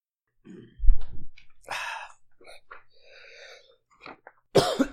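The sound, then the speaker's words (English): A man's coughing fit: several harsh, irregular coughs and throaty hacks in quick succession, with wheezy strained breaths between them and a loud, raspy burst at the end. “He can't stop coughing, so he's going to get something to ease his coughing fit.”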